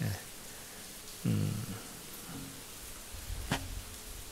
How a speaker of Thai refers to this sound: ฝนตกมาแรงแล้วก็มีลูกเห็บมาด้วยนะก็เพิ่งเคยเจอเหมือนกันนะ